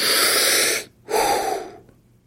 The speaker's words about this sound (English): Accept this and take full abdominal breaths and blow them out. Don't gasp or pant. Breathe deeply. Blow it out.